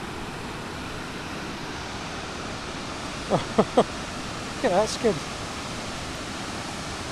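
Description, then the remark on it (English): A steady, broad roar of rushing water from a waterfall, heard from about 50 to 100 feet above it, where a river comes down in a cascade of several drops, fills the whole recording, with a person briefly speaking over it midway. “We're maybe 50, 100 feet above the waterfall and it is spectacular.”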